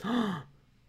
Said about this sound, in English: I want everyone to know that I gasped, but I didn't make a single change in my face. I went. Oh wow, that's crazy.